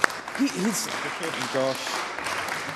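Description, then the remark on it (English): Subdued applause ripples through a parliamentary chamber, a soft, steady patter of clapping with a few voices murmuring underneath, never swelling into a loud ovation. “The muted applause hasn't got any better from last week, and it's no wonder, because the answers haven't got any better either.”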